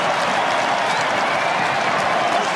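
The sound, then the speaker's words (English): Sustained applause from a large stadium crowd of fans standing as a player strolls past them celebrating at a rugby match, a dense continuous wash of clapping with a faint crowd murmur underneath, steady and loud throughout. “They stand and applaud as he strolls past these fans.”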